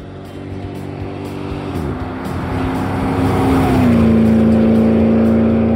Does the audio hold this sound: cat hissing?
no